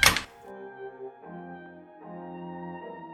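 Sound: door shutting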